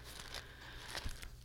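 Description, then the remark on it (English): Close, crinkly rustling of Bible pages being handled right by the microphone, with a few sharper crackling bursts over a steady low background hum; no one speaks. “Sorry, guys, that you can hear my Bible rustling in my microphone.”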